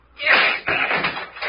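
A locked door is forced open by swinging a chair against it: a loud splintering crash followed by a second heavy thud and rattle as it gives way, harsh.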